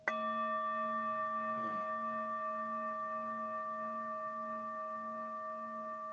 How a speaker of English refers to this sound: I'm going to use this mallet. This is a wooden mallet with a piece of goat hide wrapped around it. Produces a very nice sound as well. More of a clang.